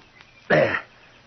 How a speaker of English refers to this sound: It's a parrot. There's a watchdog of a bird for you.